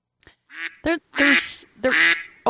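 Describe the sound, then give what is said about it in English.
A duck quacks several times in quick, uneven succession, the calls loud and nasal, with longer raspy quacks in the middle and no talking over them. “ducks.”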